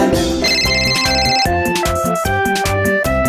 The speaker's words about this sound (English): The telephone is ringing, I know just what to do. Pick it up, pick it up, pick it up right now.